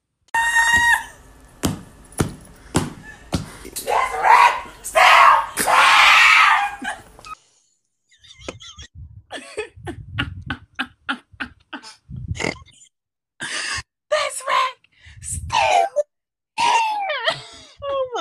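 A person screams at the rack, letting out loud, piercing screams and strained shrieks in repeated bursts, broken by sharp clattering knocks and brief pauses, with no ordinary talking.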